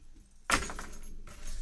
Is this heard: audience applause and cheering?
no